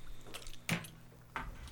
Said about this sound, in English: Yeah, please clean your palate. Before please keep chewing near the microphone, my God. Please.